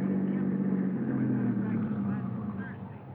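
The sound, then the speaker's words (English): A car engine hums steadily at a low, even pitch as the vehicle winds slowly up the driveway to a mansion overlooking the ocean at 7:30, fairly loud, easing off slightly toward the end. “By 7:30, we were winding up the driveway to the DeSalle mansion overlooking the ocean.”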